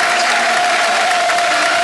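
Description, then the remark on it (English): Steady, sustained applause from a football crowd at full-time of Peterborough 5, Millwall 3, applauding the Millwall team: a dense wash of clapping at an even level for the whole moment, with a faint steady tone running underneath and no voices standing out. “Honest Mill show, good applause from the crowd.”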